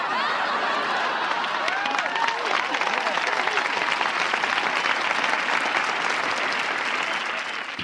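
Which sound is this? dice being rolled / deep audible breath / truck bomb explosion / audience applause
audience applause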